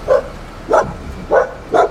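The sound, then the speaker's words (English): A dog barks four times in a steady rhythm, each bark short and fairly loud, with brief pauses between them and no voices present. “No matter how eloquently a dog barks.”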